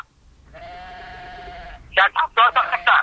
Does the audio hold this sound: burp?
no